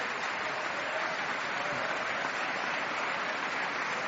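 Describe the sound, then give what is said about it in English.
Sustained, dense applause from members of the US Congress giving a speaker a standing ovation fills the whole stretch, steady and loud with no pauses. “A standing ovation, no less.”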